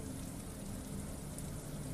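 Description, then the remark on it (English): Steady rain patters against multi-paned window glass with metal grids at night, with lightning over the sea, in a continuous, even hiss with soft low drumming underneath and no voices. “Rain cascades down the multi-paned windows, trickling around the intricate metal grids around each pane of glass.”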